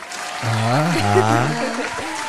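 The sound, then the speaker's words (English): A short burst of steady audience applause after a newcomer introduces herself, with a sustained, wavering voice, like a cheer or drawn-out call, riding over the clapping for about two seconds. “There we go. Applause.”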